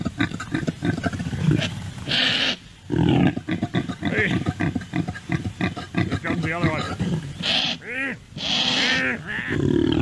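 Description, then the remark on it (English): Rough, guttural roaring grunts from wild impalas during mating, repeated in loud bursts with throaty rasping calls, while a person speaks briefly over them. “Maybe some of you are lucky, but a lot of you are stuck in traffic and, you know, maybe you do need to hear the noises of wild Impalas mating.”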